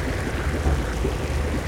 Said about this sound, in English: Ah, there it is. That's the sound of millions of gallons of water being sucked into some place I'm guessing you wouldn't want water.